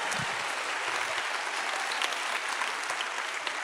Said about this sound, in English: Can somebody clap their hands in here this morning?